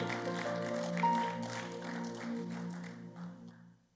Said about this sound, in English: Oh, give a big clap to the Lord.